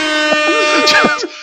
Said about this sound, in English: I gotta pull out these air horns when it's a good enough pun.